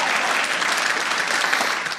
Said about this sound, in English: Thank you. Not every audience claps at that part.